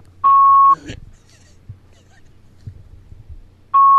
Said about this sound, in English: I think Legend's real phone is his fax machine on his line is picking up. That's seriously what's happening.